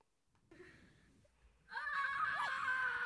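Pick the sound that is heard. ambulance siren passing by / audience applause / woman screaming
woman screaming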